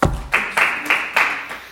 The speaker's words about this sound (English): So, very good question. Round of applause.